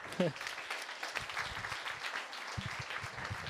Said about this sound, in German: Café Caspar. Einen kurzen Applaus fürs Café Caspar.